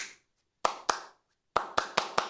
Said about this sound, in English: 200 years later, I just clap you the rhythm.